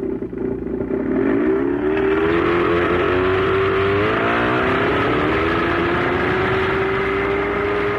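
A car engine roars, its pitch climbing as it revs up in the first few seconds, then holding a steady, loud drone with some clatter. No one speaks.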